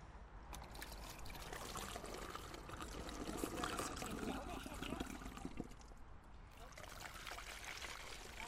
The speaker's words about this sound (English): We're going to use something else, but we'll put the water inside them first of all. So we want to fill them up so they're about half full.